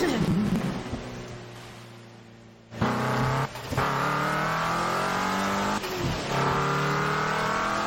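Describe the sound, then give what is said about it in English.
A race car engine revs loudly and continuously, its whining pitch climbing and then dropping with a few sharp gear-shift breaks, steady over a rushing background hiss. “I hope I get a better car at some point. Like, after this set of races.”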